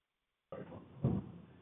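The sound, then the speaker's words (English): After a moment of silence, a muffled rustling swells up and a single dull thud lands partway through, like a door being pushed shut, with no voices. “Hopefully he went in the right door over there.”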